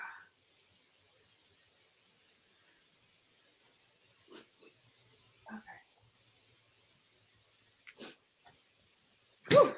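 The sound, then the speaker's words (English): A few short, snorting nasal bursts come and go against a quiet background, ending in one loud, forceful honk of someone blowing their nose. “I just need to blow my nose.”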